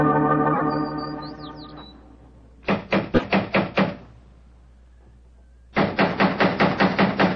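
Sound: knocking on a door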